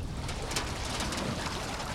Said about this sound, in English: slowly backing a simple aluminum boat into the water.